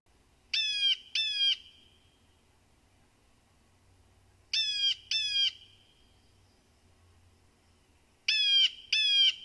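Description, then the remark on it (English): A blue jay gives its normal harsh, jeering call in paired bursts, two quick loud screeches repeated three times with pauses between, clear over faint background noise. “So the first call that you heard is the normal call for blue jays”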